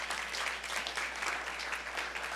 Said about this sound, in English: So for just a moment, sure, you can applaud that.